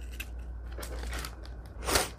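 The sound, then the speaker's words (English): Scissors snip through paper: a few soft, scattered cuts followed by one louder, crisp snip near the end, over a steady low hum with no talking. “And grabbing the scissors, snipperoo.”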